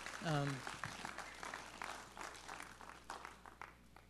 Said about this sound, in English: So give you guys just a round of applause for being just an amazing church.